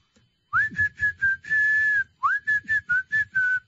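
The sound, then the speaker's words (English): A person whistles a short, bright tune in two phrases of quick repeated notes with one long held tone. The whistling is slightly breathy, with a faint throaty hum underneath. “I think I could whistle on an album.”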